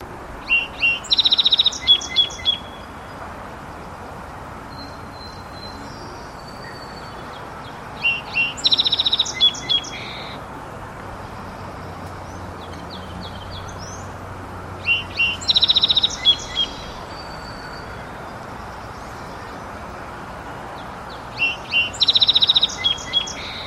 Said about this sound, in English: Song sparrows are one of the most common birds that we'll see around in our yards and shrubby areas. They're also present along the harbors, even nesting in the harbor, I think. So we'll go ahead and play a song sparrow song here to begin.